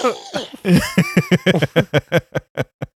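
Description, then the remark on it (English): A coughing fit from a person who is ill as their medicine wears off: a rapid run of about a dozen loud hacking bursts, voiced and raspy at first, coming faster and tapering off into short barks before stopping. “I love that you're at the level of ill where your cough sounds like a dubstep bass drop.”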